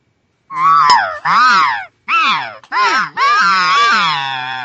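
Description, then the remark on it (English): An elk cow gives a string of about five loud, nasal, buzzy contact calls, each rising and then dropping in pitch, separated by brief pauses, with no talking. “she immediately went to that contact buzz”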